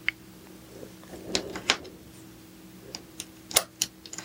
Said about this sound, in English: is going to be playing with quarters and rubbing them against each other.